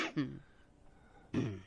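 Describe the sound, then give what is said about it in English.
Two rough, raspy smoker's coughs, a quick hacking pair at the start and another harsh burst after a short pause, with a phlegmy throatiness. “Keep that smoker's cough going.”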